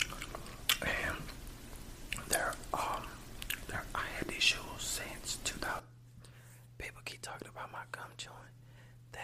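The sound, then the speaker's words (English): Wet gum chewing with soft smacks and clicks, mixed with quiet whispering at first, then continuing more sparsely over a faint steady hum. “I just don't feel like not chewing gum.”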